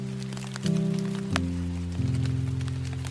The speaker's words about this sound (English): That's right, real certifiable rain. I'm completely drenched, but it was totally worth it.